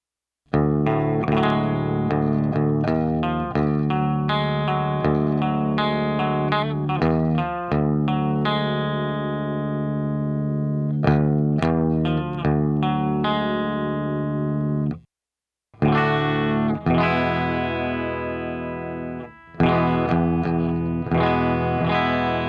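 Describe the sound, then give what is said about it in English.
Crunchy distorted electric guitar rhythm tone, built up from a clean tone with added low end, playing a chugging rhythm part, dense harmonic chords with steady strummed attacks, loud and continuous with a brief gap near the end and no talking. “And so again, you're really planning for your kind of distorted, crunchy rhythm tone.”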